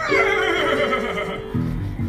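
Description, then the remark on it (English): A loud whinny from Maximus, a horse of the royal guard, with a high, quavering pitch that trails off, then a lower, rougher snort-like neigh at the end. “That's Maximus, a horse of the royal guard. And he's after me!”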